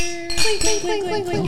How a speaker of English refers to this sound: Clink. Real clink that time. Right? I almost broke my damn glass.